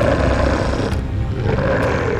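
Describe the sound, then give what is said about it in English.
A low, menacing growl from Sigmund, a wolf in a told story, rumbles steadily for about two seconds, loud and gritty with a deep throaty texture and slight surges in intensity, and no voices alongside it. “Sigmund suddenly growled, low and threatening.”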